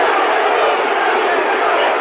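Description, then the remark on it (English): A football crowd screaming and jeering abuse at the number four player, who has gone down and stays down, a dense, steady wall of shouting voices that stays loud without a break for the full two seconds. “Some excitement to my right. Like screaming abuse at the four.”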